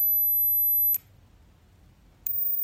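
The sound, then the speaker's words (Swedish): A thin, steady, very high-pitched hearing test tone sounds for about a second, cuts off with a faint click, then returns after a brief quiet gap. “If you can hear 8000 hertz, you're both alive and not hearing impaired. But let's keep raising the frequency.”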